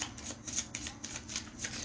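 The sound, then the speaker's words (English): A discard pile of playing cards being shuffled during a card game, a quick series of crisp riffling, papery bursts that repeat steadily for a couple of seconds with no talking. “Play a second Nth Metal, I get to look at the top card of my deck, but I do not have one, so I have to shuffle my discard pile.”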